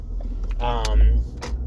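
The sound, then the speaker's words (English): A steady low engine rumble fills the interior of a car leaving a movie theater and stuck behind another car, swelling briefly as the vehicle pulls forward, with a short burst of a voice murmuring over it. “I'm sitting here in my car, leaving the movie theater, with popcorn stuck in my teeth, and stuck behind this motherfucker who is just kind of sitting here, and there's no cars coming.”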